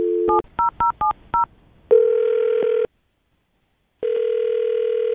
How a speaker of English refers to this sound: I'm going to dial her phone number right now and see if we can get her on the phone and find out why.